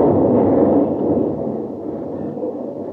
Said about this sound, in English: Hey, it looks like the whole top of the mountain's coming down on us. That's Colgar's work. He's got a landslide.